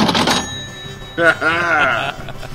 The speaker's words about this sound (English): The correct answer is Mario and Luigi Paper Jam. Oh, thank God. Two cha-chings, we both got it.